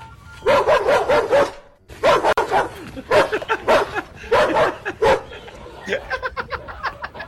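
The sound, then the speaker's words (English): A dog barks in quick, repeated bursts, loud, followed by a softer run of short, high yips near the end, with voices faintly mixed in. “Well, this is with a dog, and yeah.”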